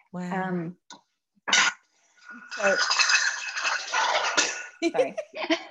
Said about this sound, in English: Like the whole kitchen's being pulled apart. No, it's the play kitchen, but gosh, it's noisy.